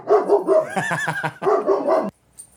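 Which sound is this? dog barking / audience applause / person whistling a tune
dog barking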